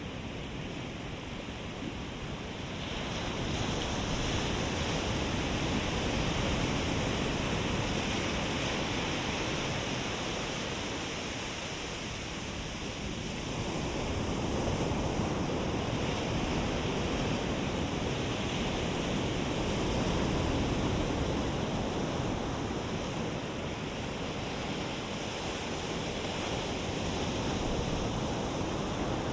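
ocean waves

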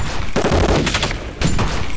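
gunshots

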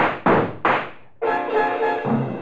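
approaching footsteps

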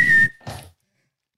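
whistle sound effect

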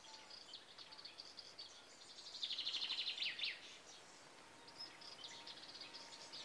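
birds singing

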